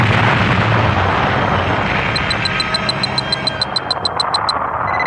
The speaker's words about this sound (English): All they heard was a computer voice counting quietly down to zero. And then, a tremendous explosion.